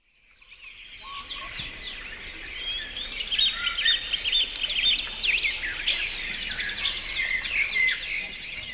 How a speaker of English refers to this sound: There was a Carolina wren that was sitting on our back fence, and it started singing, and I called back at it, and we had an entire conversation.